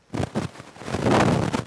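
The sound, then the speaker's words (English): Wind buffets a microphone in uneven gusts, a loud low rumbling roar that surges in short bursts and then swells into a steadier, heavier blast with no voices. “Oh my god, it's so windy.”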